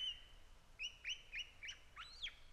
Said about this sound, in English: And right there, the liquid phrases of the pied butcher bird.